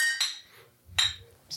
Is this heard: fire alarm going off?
no